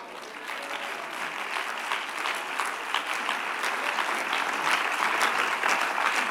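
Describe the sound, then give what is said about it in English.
A crowd of people claps steadily, a dense wash of many hands with rhythmic accents, growing slightly louder toward the end. No one speaks over it. “For some of you, it's hard to clap to this, but I said it earlier, and I'm going to ask it again.”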